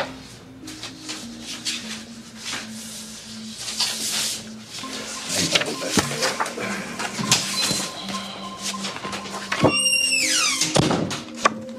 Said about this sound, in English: Hayes gets up and walks out, closing the door behind him.